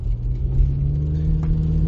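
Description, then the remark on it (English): The engine of a parked car rumbles steadily, heard from inside the car, a low, even idling drone with a faint higher whine above it, continuous and unbroken, with no voices. “That's why I'm doing this from my car.”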